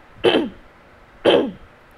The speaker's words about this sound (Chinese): 如果在前面高速哈气一到两次完之后呢，我们就感觉喉咙有点痒痒的，弹在门口啦，那我们就可以做清喉咙的动作，像是这样。